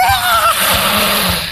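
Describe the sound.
A voice imitates an alien creature's scream, its mouth opening and upper jaw extending like a goblin shark's, in an Alien tabletop game: one harsh, raspy, sustained shriek lasting over a second, loud and noisy with a thin pitched whine at the start before fading slightly at the end.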